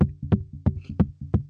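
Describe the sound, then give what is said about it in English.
Knocking in a heartbeat rhythm: repeated pairs of dull, low thumps, a softer tap followed by a firmer one, steady and evenly spaced with no voices. “It's my heart beating for you.”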